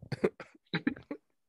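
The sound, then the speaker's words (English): A person with a slight cough and a stuffed nose coughs in two quick fits of harsh bursts separated by a short pause, with a bit of throat clearing mixed in. “And I just have like the slightest like inconvenience of a cough and like a stuffed nose and like a terrible voice.”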